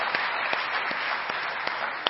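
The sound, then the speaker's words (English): An audience claps together as praise to the Lord in a morning service, a steady, dense wash of applause, with a few sharper individual claps standing out now and then; no one speaks over it. “Can we give the Lord a hand clap of praise for that this morning?”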